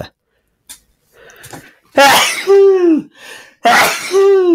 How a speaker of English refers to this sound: How much credibility do you lose as a speech giver if you sneeze in the middle? I guess less than if you burp.